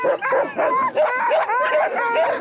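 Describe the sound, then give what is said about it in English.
A sled dog, harnessed in a team to an ATV, barks and yips excitedly in rapid, overlapping bursts, loud, with high-pitched whining yelps mixed in, jumping up and down on its front paws and straining eagerly to run, making a sound reminiscent of a sea lion. “He was jumping up and down with his front two paws and emitting a sound that was reminiscent of a sea lion.”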